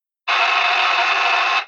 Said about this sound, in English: A bank burglar alarm!